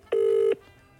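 A single burst of a phone call's ringing tone, a call that goes unanswered to EE voicemail: a steady electronic hum lasting under half a second, loud, then a faint background hiss. No one speaks.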